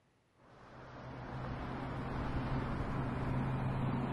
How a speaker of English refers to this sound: Then he pulled out of the parking lot and eased into the slow-moving traffic flowing through I-33.